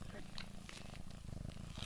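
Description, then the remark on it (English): A steady cat purr rumbles low and continuous throughout as an 11-year-old girl snuggles the cat, with soft rhythmic pulses and faint breathy noises over it. “is snuggling her cat Oreo while we talk”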